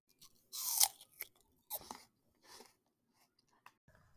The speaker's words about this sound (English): No, It is not the SodaStream. It is chewing on cereal.